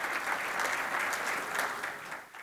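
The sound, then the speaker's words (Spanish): An audience applauds God steadily, a dense, sustained wash of many hands clapping at an even level, easing slightly toward the end with no voices over it. “Denle un aplauso a Dios, amados.”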